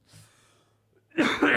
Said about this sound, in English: Listen to the heavy breathing.